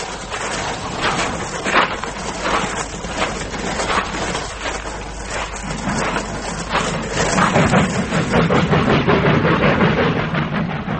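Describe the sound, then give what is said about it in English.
Rumbling railway noise with repeated metallic clanks and knocks, like train wagons shunting at railway sidings; a deeper, louder rumble builds in the second half. No one speaks. “There's railway sidings over there.”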